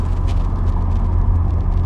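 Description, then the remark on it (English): A steady, low rumble with road noise from a car being driven at about 4:45 on a Friday morning, with few other cars on the road, holds at an even, fairly loud level throughout, with no one speaking and no distinct rise or fade. “It's about 4:45 in the morning, and not a lot of cars as usual.”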